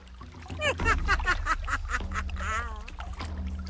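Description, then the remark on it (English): A duck quacks repeatedly in raspy, nasal bursts, loud, over a low steady rumble of background noise. “It's just a bird. Just a bird.”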